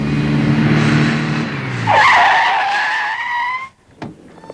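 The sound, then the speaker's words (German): A police patrol car carrying Herr Glockner and two police officers arrives: its engine rumbles and winds down, then tires screech loudly in a long, high skid as it brakes to a halt, followed by silence and a single short thump. “Tarzan rief im Polizeipräsidium an und schon wenige Minuten später war Herr Glockner mit einem Streifenwagen und 2 Polizisten zur Stelle.”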